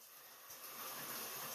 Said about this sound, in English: I'm in the shower right now.